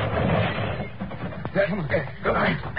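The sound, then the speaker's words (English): A car crash sound effect from a street chase: a pursuing car swings its wheel to smash into the fleeing vehicle at the curb. A dense, rumbling clatter of noise with one sharp smashing hit about halfway through, followed by more crunching debris and muffled shouting voices. “Swing your wheel and smash into their fingers.”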